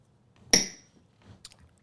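A single bright clink of glasses touching in a toast, with a short ringing tone that fades quickly, followed by a few faint soft knocks and rustles.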